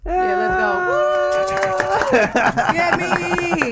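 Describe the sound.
A burst of sharp, rapid hand claps starts partway in and keeps going, layered over steady, sustained tones like voices or music holding notes underneath.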